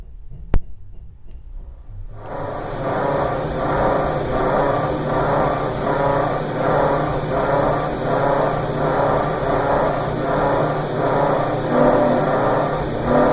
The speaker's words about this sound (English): All right, so here's this. This is my refrigerator in my tiny apartment.